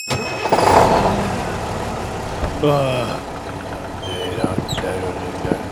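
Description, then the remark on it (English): A bus engine rumbles and revs up as it pulls away, with a steady low drone and rising whine building over several seconds amid some background noise. “Right, everyone, onto the bus. It's time to go.”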